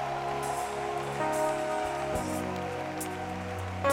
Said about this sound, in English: Stand to your feet and clap your hands for Jesus.